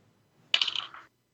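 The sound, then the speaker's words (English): A short clatter of dice tumbling across a hard table, rolling a 6: a sharp first hit, then a quick run of rattling clicks that fades within half a second, with no voices. “And I rolled a big fat 6.”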